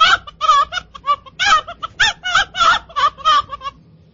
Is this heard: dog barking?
no